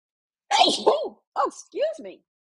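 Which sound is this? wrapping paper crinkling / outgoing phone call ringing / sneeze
sneeze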